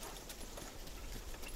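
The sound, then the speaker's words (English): A horse-drawn carriage rolls along with wheels rattling steadily, mixed with the faint clip-clop of hooves in a continuous, even texture without any voices. “We share glances and vacant stares as the wheels of the carriage rattle and roll.”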